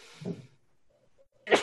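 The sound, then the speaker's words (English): A person sneezes: a breathy intake and first burst, a quiet pause with faint sounds, then a sharp, loud, explosive sneeze at the end. “Bless you.”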